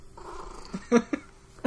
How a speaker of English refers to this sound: Is that a kitty cat? Yes. Get out of here, kitty. Kitty cats are welcome on the pod.